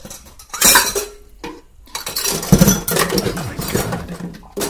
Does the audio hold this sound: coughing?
no